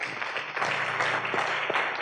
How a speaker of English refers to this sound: Come on, clap for him.